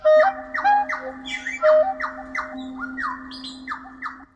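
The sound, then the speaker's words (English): A nightingale sings alone, pouring out quick, varied phrases of slurred, downward-sweeping notes and bright whistles over a sustained steady tone, loud and clear with no voices. “And then finally, the most superior top nightingales just ignore what you do and just maybe they sing, maybe they don't.”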